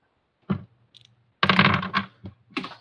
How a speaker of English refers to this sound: Everything fell off the fucking table.